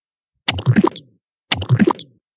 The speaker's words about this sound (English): Uh-oh. That might be an overflowing shower right there. That's a ghost walking around. Oh. Sound maybe it's a ghost walking around in 2 inches of water. I think it's one of those slimy ghosts walking.